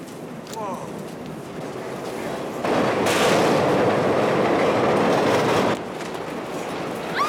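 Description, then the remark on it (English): A train commandeered for a film stunt rumbles steadily along the tracks with dense mechanical clatter, growing louder and fuller midway before easing back, a continuous roar throughout. “So I guess we commandeered the train.”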